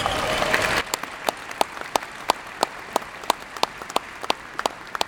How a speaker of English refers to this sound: Might be a good time to give yourselves a round of applause.